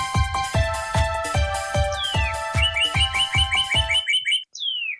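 Bright bird chirps and quick rising tweets ring out over a steady thumping beat and sustained electronic tones, then the beat drops away and a few chirps continue alone at the end.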